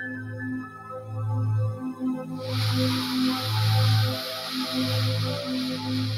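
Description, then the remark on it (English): A long, airy four-second inhale through the nose during a breathing exercise rises as a steady breathy hiss about halfway in and lasts to the end, over a low, soft sustained musical drone. “Inhale.”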